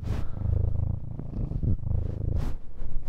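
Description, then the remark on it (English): A cat purrs steadily, a low rumbling drone that swells and eases with each breath, about three cycles, with no voices over it. “I don't think that Mike's going to be able to pick up that cat.”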